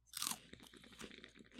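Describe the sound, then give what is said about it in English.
A loud crunch of biting into a cannabis-infused shrimp chip, followed by several quieter crackly chews in quick succession, with no talking. “I specifically really love these cannabis infused shrimp chips. I want to try one. I am going to do an ASMR crunchy.”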